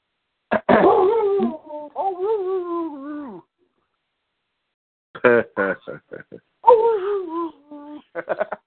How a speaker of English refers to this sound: Oh, you're just barking at dogs. Yeah, I know, Juno. I know you are.